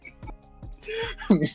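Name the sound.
coughing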